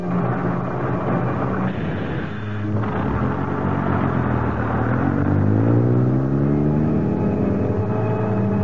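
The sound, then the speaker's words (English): A bus engine rumbles steadily, then its tone climbs as it accelerates, with rising harmonic whine over a constant low drone and no voices. “It was a long bus ride, but it seemed short to me.”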